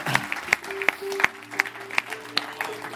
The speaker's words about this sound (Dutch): Come on, why don't we give the band a hand? Kom, laten we de band een applaus geven.